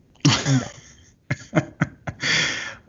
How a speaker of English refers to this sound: Dang, got to clear my throat. Wearing that mask.